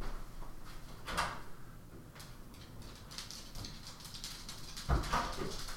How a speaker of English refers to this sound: Come on in, doggy.